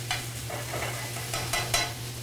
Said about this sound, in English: So we're just going to caramelize that chicken up a little bit.